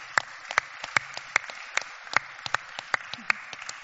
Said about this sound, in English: Well, that clap was pretty lame because here's the deal. You wouldn't have life if it wasn't for moms. And so you celebrate a lot of things more than that. You should be celebrating moms like crazy